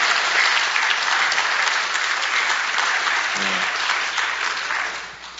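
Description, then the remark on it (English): Sustained audience applause, a dense wash of many hands clapping at a steady loud level, easing off slightly toward the end, with a brief faint voice in the middle. “You guys can clap.”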